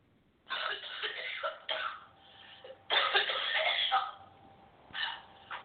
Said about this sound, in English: I taped her cough for you yesterday.